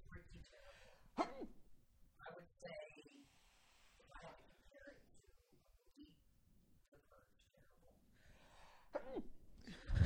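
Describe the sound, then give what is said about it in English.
A short, sharp sneeze bursts out into the microphone, surrounded by quiet breathy sounds and soft, indistinct vocal noises. “I just sneezed.”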